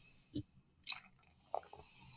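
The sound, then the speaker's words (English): Wine being poured, heard as a few soft, separate bubbling glugs and drips spaced across a quiet background, with no talking. “Ooh. The bubble sound.”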